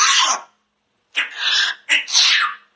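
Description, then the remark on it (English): A parrot imitates a human cough: one short raspy hack, then after a pause two longer, breathy coughing bursts in quick succession, fairly loud, with no talking. “Like, bird coughing and sneezing compilation.”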